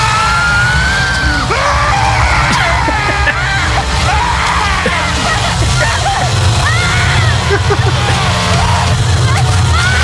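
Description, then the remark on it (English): Loud, sustained male screaming and yelling from a killer chasing a victim in a horror film scene, with a second voice crying out amid a dense, rumbling background of commotion and splashing. “I mean, the majority of the screaming you're hearing is him.”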